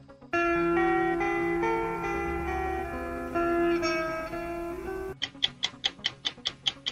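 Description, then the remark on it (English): A sustained synth music sting plays for about five seconds, then cuts to a steady, fast run of loud clock-like ticks, a 60-second quiz countdown timer for the category Fade to Black. No one speaks. “Your time begins when Paul plays the music.”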